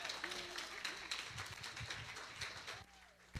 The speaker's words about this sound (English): Keep clapping. Come on. Clap till she's up here.